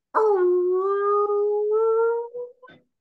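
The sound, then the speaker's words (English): A person voices a long, drawn-out moaning call like a whale, holding one steady tone for about two seconds before it breaks into a couple of short, wavering trailing notes. “Great whale call.”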